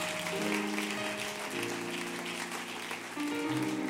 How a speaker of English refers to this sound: Why don't you give a big hand clap, round of applause to the praise team and the band for leading us in worship tonight.